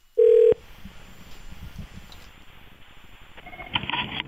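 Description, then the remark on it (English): A loud, brief phone tone opens, followed by a few seconds of faint line hiss, then a telephone ring begins purring through the receiver near the end. No one speaks. “Okay, let's get her on the line.”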